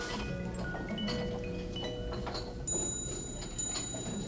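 A musical clock from the 1820s plays a tinkling melody of bright, ringing metallic notes that sustain and overlap, at a modest level with no voices.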